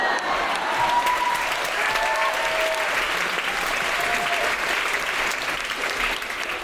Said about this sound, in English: More, but I like the applause, so I'm going to stop there.